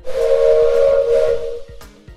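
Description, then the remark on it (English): A loud, sustained steam train whistle blows for over a second with a hissy edge and rhythmic chugging beneath it, then cuts off into a few short puffs of steam. “And, maybe best of all, the portable hole, which is a hole that you can pull out of a box and put on a wall, and it turns that wall into a train tunnel.”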